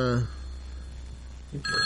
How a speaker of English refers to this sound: Is that my phone again?